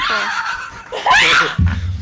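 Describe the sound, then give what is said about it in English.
A person lets out a shrill, high-pitched, loud screech, wavering and breaking into laugh-like squeals before a lower, rougher burst at the end. “You screeched.”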